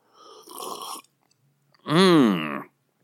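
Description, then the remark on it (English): An airy slurp of whiskey being sipped, then a short pause and a loud, throaty, satisfied voiced exhale, almost a burp. “Today, I am confident that I am the master of my whiskey. I will sip my apprentice, and then we will begin.”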